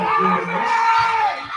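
A crowd cheers and yells steadily throughout behind a woman deadlifting three reps at a competition, a dense, loud roar of voices with a sustained whoop rising above it midway.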